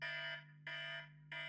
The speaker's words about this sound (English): We'll have a 5-minute timer going on, so that when 5 minutes are up, you will hear this noise at 5 minutes.